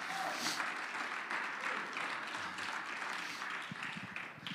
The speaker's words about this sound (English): Oh, I wish you'd clap your hands unto the Lord. Come on, somebody, make a joyful noise unto the Lord.